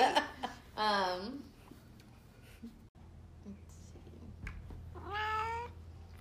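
Two drawn-out cat meows, close and fairly loud, one near the start and another near the end, with a quiet stretch of low background hum and faint rustling between them.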